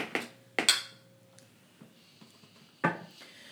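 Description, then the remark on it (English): Three sharp glassy clinks, two in quick succession and one after a pause, each leaving a short bright ringing tone, as glasses of IPA beer are tapped together in a toast. No one speaks. “Here, chin chin.”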